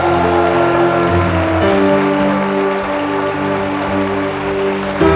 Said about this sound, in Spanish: Los jóvenes de esta iglesia el jueves vinieron aquí a orar a las 6 de la tarde. Denme un aplauso a los jóvenes de esta casa.